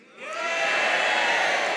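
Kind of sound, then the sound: crowd, audience cheering and booing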